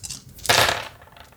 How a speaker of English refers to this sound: You guys hear that? Oh my God, you have actual dice? Oh, yeah. Oh yeah. I had to go to like the bargain bin at the game store, but I found 2 sets of fate dice.